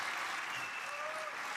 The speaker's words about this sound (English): He's getting kind of half-booed, half-cheered.